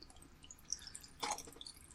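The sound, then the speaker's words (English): A drink is poured into a glass in a short, quiet burst of splashing liquid, with a few faint drips before and after. Nobody speaks. “I'm going to pour a drink and we're going to get to the names because my God.”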